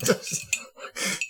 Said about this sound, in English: Are you saving the ice cubes? Well, I don't know how to take them out otherwise.